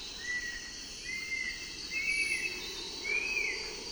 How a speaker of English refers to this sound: And what a pleasant cricket! Brief ringing trills that provide a musical counterpoint to the flycatcher.